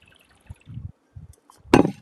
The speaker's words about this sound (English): frog in my throat. I had to clear that one.